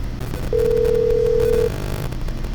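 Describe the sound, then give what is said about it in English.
A single steady electronic ringback tone sounds for about a second, like a phone ringing on the line during an outgoing call, over a low background hum. “I didn't pick up the phone because either I'm busy or I didn't recognize your number.”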